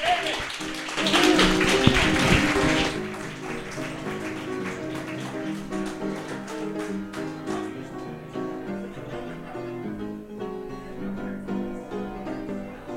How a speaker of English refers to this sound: Nathan Raven, everybody, please, please clap for Nathan Raven.